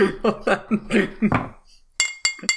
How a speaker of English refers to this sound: I don't have the thinner glass so I can make the real bell sound.